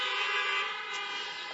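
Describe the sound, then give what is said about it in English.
Several car horns blare together in a sustained, overlapping chorus of honking from people in cars at a church service, honking in thanks to the parking and emergency response teams, loud and continuous for the whole moment, with no voices. “And then our happy Parkers and our emergency response team, would you honk for them as well this morning?”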